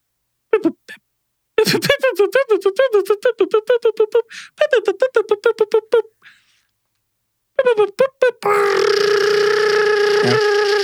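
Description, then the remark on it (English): A novelty machine sputters through a rapid run of choppy, stuttering bursts, pauses, then kicks into a steady, loud, droning buzz that keeps running to the end. “This is the best the Randomatron's ever sounded.”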